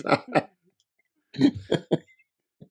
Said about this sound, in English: All right, choked. I choked over here. I had to mute myself coughing.